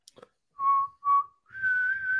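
A person whistles a short pop melody, a few clear sustained notes with brief gaps before a longer held tone, with a couple of faint clicks at the start.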